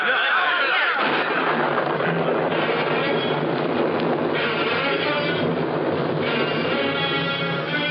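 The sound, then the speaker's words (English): A great thunderstorm breaks over the valley of Thrums as an audience leaves the kirk, with a sudden surge of loud, deep rumbling that swells into a sustained, roaring crash of thunder and storm noise, rain pouring down, continuing heavily without letting up. “As the congregation burst out of the kirk, the storm cut loose.”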